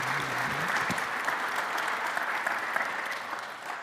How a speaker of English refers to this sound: And these two are involved with pioneer Bible translators in making that message spread to the ends of the earth. And so if you can give them a warm welcome, a round of applause, let's hear from them.